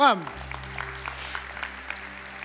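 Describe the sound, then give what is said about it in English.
An audience claps in a dense, crackling patter that holds steady for a couple of seconds at moderate volume, over a low steady hum. “I don't say that for applause, you boneheads, I'm just saying that.”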